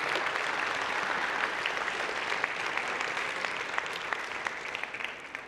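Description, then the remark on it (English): A standing church audience in a sanctuary applauds steadily as a clap offering to God, dense overlapping claps at a constant loudness for several seconds, with a few sharper individual claps standing out near the end. “Let's give the Lord a clap offering.”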